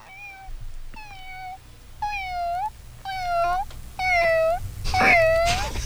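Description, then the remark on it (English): A person mimics a cat, giving six drawn-out, whiny meows in steady succession about a second apart, fairly loud, with a faint low rumble underneath. “Kitty?”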